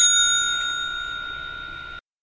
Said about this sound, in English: You can take that one to the bank, and if I had the bell right next to me, we'd be doing a ding again. In fact, there it is.